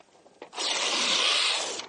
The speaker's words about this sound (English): Look, here's a piece of paper. Right? Never before anything done with it. I want to rip it in half.